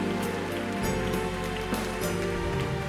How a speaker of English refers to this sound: Clap your hands. Give God a hand of praise.